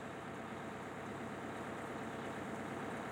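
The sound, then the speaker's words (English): A school bus engine idles in a scene from the film Forrest Gump, a steady, low rumbling drone that holds unchanged for the whole stretch, fairly quiet, with no voices or other sounds over it. “You understand this is a bus to the school now, don't you?”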